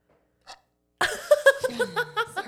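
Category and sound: human body sound, small burp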